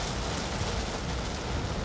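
Heavy rain pounds steadily on a car, heard from inside the car while driving: a dense, unbroken hiss with a low rumbling drum underneath, holding an even loudness throughout with no voices.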